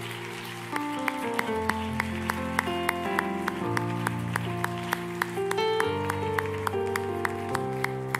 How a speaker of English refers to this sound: Let's clap our hands unto the Lord one more time.